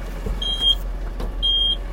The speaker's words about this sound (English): What's wrong with you? Why are you beeping at me?